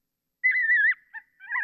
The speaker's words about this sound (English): Is that some kind of bird in distress? No, that was a coyote pup in distress. Oh, coyote pup. Yep, pup in distress.